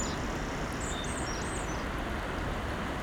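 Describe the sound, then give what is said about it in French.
A few brief, high chirps from a small flock of birds flying overhead in winter, scattered over about a second, above a steady wash of wind. “plus près, en haut, un vol d'oiseau. Ça chante.”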